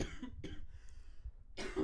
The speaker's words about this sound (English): Sorry. COVID moment. I coughed, but.